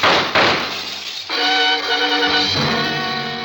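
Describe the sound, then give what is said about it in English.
Two sharp, loud bangs in quick succession, gunshots fired from outside, followed by a heavy crash of a window shattering and a bright ringing resonance that hangs in the air for a couple of seconds. “The bullets had come from outside. I moved to the shattered window and looked out.”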